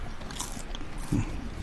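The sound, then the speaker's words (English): A crisp crunch of someone biting into a butter biscuit chocolate, followed by a few softer crackly chewing sounds, with no talking. “Oh, yeah, I heard the crunch.”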